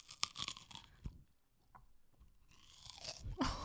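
A bite into a soft cookie followed by moist, muffled chewing, with a few crunchy, crackly bursts in between, fairly quiet overall and with no talking.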